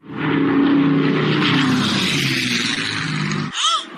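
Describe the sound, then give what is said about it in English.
Loud roar of propeller warplane engines droning steadily overhead as a B-17 Flying Fortress and a Bell P-63 King Cobra collide in midair at the Wings Over Dallas World War II air show, recorded by spectators; then an abrupt break as the low engine rumble cuts out and a brief sweeping whine follows. “A B-17 Flying Fortress and a Bell P-63 King Cobra aircraft collided in midair and crashed into the ground over the weekend at the Wings Over Dallas World War II air show.”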